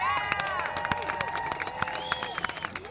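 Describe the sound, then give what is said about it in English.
An audience gives its weekly applause on the Hungry Girl show at Hungryland, with many sharp overlapping claps and a few louder standout claps, while sustained whooping cheers rise above the clapping throughout. “Love the weekly applause.”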